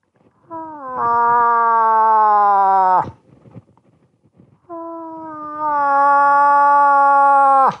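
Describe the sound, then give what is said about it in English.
A person's voice imitates a cow moose call: two long, nasal, wavering moans, each about two and a half seconds, sliding slightly downward in pitch, separated by a brief pause. “And then a lot of it came to rip a cow call for us real quick.”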